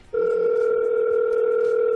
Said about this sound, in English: Maybe Miss Piggy's not doing anything. I don't know. Let's try. All right. It's ringing.